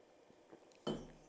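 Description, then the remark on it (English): After a near-silent start, a glass chalice knocks with a bright clink and a short ringing tone as someone takes a sip, followed by a second sharp tap at the very end. No one speaks. “Probably worth another sip from the chalice because there are some very puzzling things on this piece of paper.”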